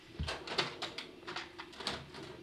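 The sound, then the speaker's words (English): Someone rummages through a drawer for an old Fujifilm DS7 camera, with a soft thump followed by a run of irregular clicks, rattles and scrapes of objects shifting about, moderately loud, with no talking. “And if you wait a second, I think I've got it in my drawer.”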